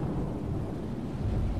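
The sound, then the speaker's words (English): A stormy roar of deep, rolling thunder mixed with rushing rain and wind from a heavy storm hitting a ship at sea, loud and steady throughout the short stretch, with no voices. “During the journey, a heavy storm hit and threw Fievel off the ship.”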